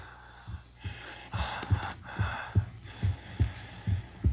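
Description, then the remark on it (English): Heavy, rasping breaths of a creature just brought to life swell and fade over a steady, thudding heartbeat pulsing roughly twice a second, fairly quiet, with no voices. “It's breathing.”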